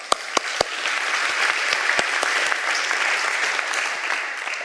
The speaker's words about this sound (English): We have a wonderful team, and we need to give them a round of applause. Wonderful team going down to Ronald McDonald House today.